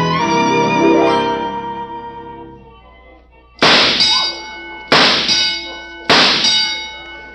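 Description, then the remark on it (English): A ringing metallic clang fades out, then three sharp clangs follow at roughly even intervals, each bright, loud and left to ring, as metal target ducks are knocked down in a shooting gallery, 18 out of 20 ducks knocked over. “Well, I knocked over 18 out of 20 ducks.”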